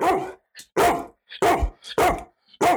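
A dog barks loudly, about five sharp, full barks in a fairly steady rhythm, with faint little yips in the gaps between them and no talking.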